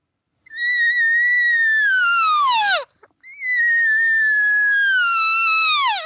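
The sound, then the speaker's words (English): A voice imitates an elk cow's regathering mew, the call a cow makes while moving: two long, loud, nasal mewing calls, each holding a steady pitch before sliding downward at the end, with a brief pause between them. “The only difference is I don't use the bugle, because when I hear a cow moving, she'll be moving as she's making the regathering muse so many times.”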